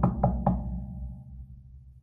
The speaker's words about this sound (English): And I'm knocking on wood here.